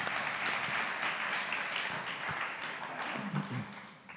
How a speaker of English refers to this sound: Let's give God one more round of applause. Come on.